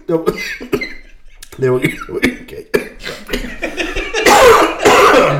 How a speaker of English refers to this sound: That was God making me cough so I didn't say anything racist.